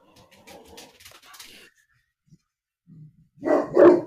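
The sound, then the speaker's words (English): A dog named Duncan lets out two loud barks in quick succession near the end, preceded by quieter, scattered noises and a brief low grumble. “Whose dog is that?”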